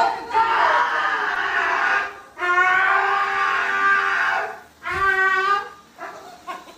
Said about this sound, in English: It's a dog. It's a dog being groomed for those. Just oh, that's shit. Really great. That's a good dog. Making that noise. The dog. The dog. The dog. Yeah. Oh, the dog's enjoying it.